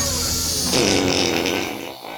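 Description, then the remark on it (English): A loud, raspy fart rips out, a steady buzzing blast that lasts over a second before trailing off, with no talking over it. “You gotta reconfigure your diet, bud. Whatever. My farts are more intelligent than you.”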